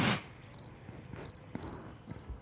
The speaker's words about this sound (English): No, my phone is dying, so it locked, and then I couldn't do the crickets.